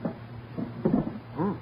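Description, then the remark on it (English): A wooden table drawer slides open with a short scraping rub, followed by a couple of soft knocks and a faint creak. “Here, look, inside the drawer of this table,”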